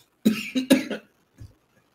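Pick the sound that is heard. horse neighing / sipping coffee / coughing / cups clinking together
coughing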